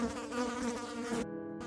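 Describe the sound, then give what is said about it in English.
A steady, dense buzzing of a swarm of flies around a stainless steel Frigidaire refrigerator, a continuous mid-pitched drone with a rich harmonic whine that wavers slightly, heard alone without any talking. “Now that he was a few feet from the fridge, the swarm of flies were thick enough to be visible.”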